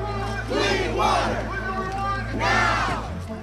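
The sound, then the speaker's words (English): An angry crowd of demonstrators in Flint chants in loud, rhythmic bursts, voices surging together in two big swells over a steady low hum of background noise. “Demonstrations in Flint were starting to grow larger, more frequent, angrier.”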